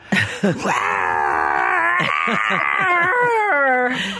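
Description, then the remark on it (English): A person imitates a tiger's roar: one long, loud, throaty vocal growl that wavers and bends in pitch for about four seconds, with no other sounds around it. “I'm going to try this again because in the other show, Anna and Caro laughed at my roar.”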